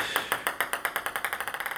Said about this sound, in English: Actually, that wasn't a sound effect. That's the front door.